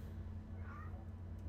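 cat meowing

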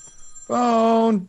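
telephone ringing

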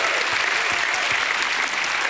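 audience hand clapping

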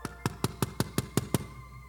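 knocking on a door

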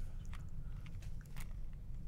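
chewing food

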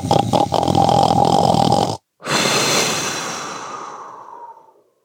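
loud snoring

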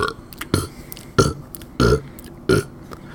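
deliberate loud burp

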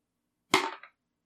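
explosion sound effect

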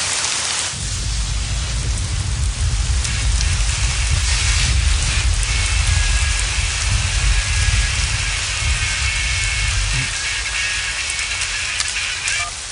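heavy rain

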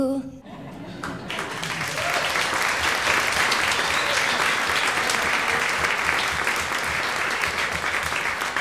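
audience applause and cheering

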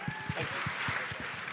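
audience cheering and applause

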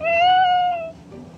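cat meowing

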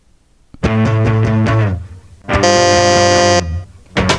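game show buzzer

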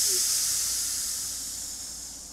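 hissing steam

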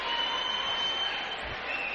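basketball game crowd noise

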